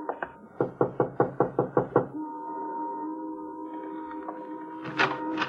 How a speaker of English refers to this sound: 763 was a white single-frame house badly in need of repairs. The shades were drawn, but a dim light inside indicated someone was at home. Want to knock? Sure.